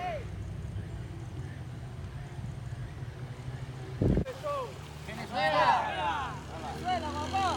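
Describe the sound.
Fourteen boats travel across water on a Sunday morning, heading deep into the Darien Gap, with a steady low motor drone running throughout. A sharp thump cuts in partway, followed by loud, overlapping voices calling out over the engine noise.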